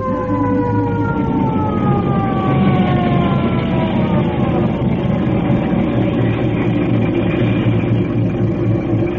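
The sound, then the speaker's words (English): A fire engine siren wails steadily while the fire engine is being driven, its pitch gliding up and down over a loud rumbling motor, continuous for the whole stretch with no talking. “Boy, when I roll past the Elks Club with a siren going 70 and me going 30, those guys will be wild.”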